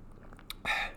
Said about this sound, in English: I'm just gonna take a slurp of my water because my mouth's getting a little bit dry.